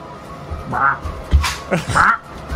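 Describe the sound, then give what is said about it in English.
A person mimics a parrot, letting out several raspy, nasal squawks in quick, uneven succession, fairly loud. “Why do you make me like a parrot where I'm always doing this?”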